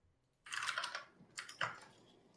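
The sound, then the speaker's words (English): Quick bursts of computer keyboard typing, a cluster of rapid clicky keystrokes followed by a short pause and a few more taps, fairly prominent with no voices. “By the way, can you, is there anything you can do about your keyboard? It's a little on the high.”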